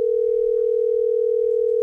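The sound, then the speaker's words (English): A steady, unbroken telephone dial tone hums at a constant mid pitch for about two seconds as a phone call is placed, with no talking over it. “Okay, so my daughter is a VIP tour guide at Disney World in Orlando, Florida, and I've got to know more about this dolphin situation, so I'm going to call her right now and see if this is even a thing.”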